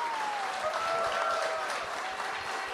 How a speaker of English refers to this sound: Give them a big applause.